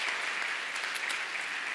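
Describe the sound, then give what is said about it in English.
A crowd claps steadily, a dense, continuous patter of many hands at an even loudness with no voices breaking through, filling the whole short stretch. “So one final round of applause to all of them.”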